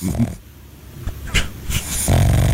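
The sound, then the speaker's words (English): A pug dog snores while napping, with low rumbling breaths and a few short snorting snuffles in an irregular rhythm, fairly loud against a quiet background. “That's our pug. Oh, that's Pugcito right there. Yeah, taking a nap.”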